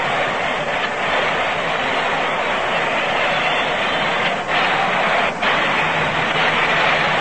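A large baseball stadium crowd applauds steadily after Albie Pearson's double and Willie Mays's fielding, a dense wash of clapping and noise that holds at an even, loud level for several seconds with no voices standing out.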